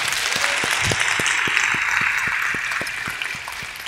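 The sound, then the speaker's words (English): After a short prayer of thanks, an audience applauds at length, with a dense wash of many hands clapping at once and a few sharper individual claps punctuating the roar at a quick, regular rhythm. No one speaks over it. “That's a short prayer, but it deserves to be a short clap, but that deserves to be a long one, so thank you.”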